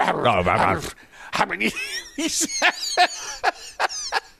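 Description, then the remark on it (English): A person's voice imitates a dog barking, starting with a drawn-out howling sound, then a string of short, sharp yaps in an uneven rhythm, fairly loud. “… sounds like a dog barking.”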